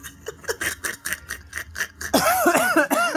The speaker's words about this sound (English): I'm coughing. Don't laugh.